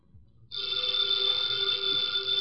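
After a brief quiet moment, an old telephone bell in Nero Wolfe's office bursts into loud, continuous rapid ringing, a bright metallic trill that keeps going without a pause until the end.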